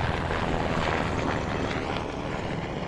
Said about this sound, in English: That is a big military helicopter. Another one coming by.